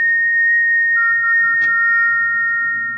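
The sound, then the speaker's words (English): An eerie, steady whistle sounds late at night in a bedroom as a storm brews. It holds one high pitch throughout and is joined after a second by a slightly lower tone, over a faint low rumble. No one speaks. “It's come again. That whistle.”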